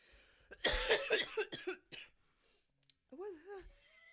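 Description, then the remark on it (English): A harsh fit of several rapid coughs in quick succession from a woman who has just smoked from a bong, followed by a pause and then a short, wavering vocal groan as the coughing settles. “I really tried not to cough.”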